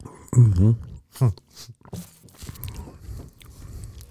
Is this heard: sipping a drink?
yes